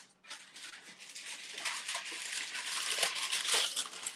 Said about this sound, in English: So here's my granola mixture here. I have a pan. I'm going to take some parchment paper.